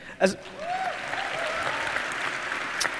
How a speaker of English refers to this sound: See, you did it again. You clapped for yourself.